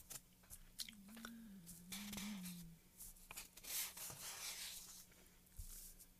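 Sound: paper pages being turned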